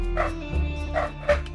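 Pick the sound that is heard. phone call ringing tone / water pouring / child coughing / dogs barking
dogs barking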